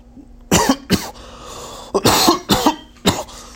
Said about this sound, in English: Sorry about that. My morning cough.